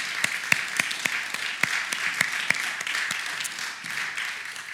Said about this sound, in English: So much so, we're going to give you a round of applause right now for making that call.